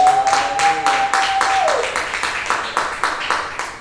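An audience applauding with steady, rhythmic clapping that fades gradually over about four seconds. A sustained high tone sounds through the first half, then slides downward and disappears.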